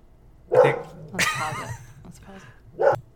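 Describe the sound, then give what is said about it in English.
Todd, a pet dog, barks twice in another room, with sharp single woofs near the start and end, separated by a stretch of wavering voice-like sound, all somewhat muffled as if coming through a wall. “Oh, okay, so as I was saying before, I was rudely interrupted by our dog, Todd.”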